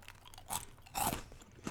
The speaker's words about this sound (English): Oh gosh. That is the crunch of the forever lost Oreo O's coming back to me. It's here. It's a giant box.